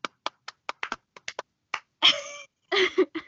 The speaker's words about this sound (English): For those slow claps. Bravo. Beautiful. Kidding.